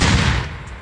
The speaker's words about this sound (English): We got a hot cannon barrel there. Okay. Gotta let it cool be down.